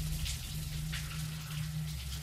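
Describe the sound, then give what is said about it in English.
Shower water runs in a steady, unbroken hiss, with a low constant rumble underneath and brief brighter splashy swells. No one speaks. “With the water still running, I threw back the curtain.”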